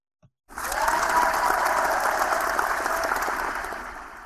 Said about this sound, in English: I there's an effect here in Google Hangouts where if I want applause, if I want the narcissistic supply of an imagined audience applauding me, I can make it play.